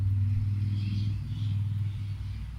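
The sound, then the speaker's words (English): A motorbike passing by outside: its engine rumbles steadily, a deep, fairly loud drone that swells slightly in the middle and then eases off a little, with no one talking over it. “All right, so there might be a pause here for a little bit if a motorbike comes real past.”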